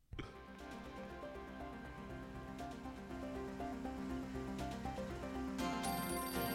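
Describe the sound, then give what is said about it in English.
An outdoor telephone rings steadily and loudly for several seconds, its dense, buzzing bell tone sustained over a busy, hissing background, with no one speaking. “Oh, the outdoor phone.”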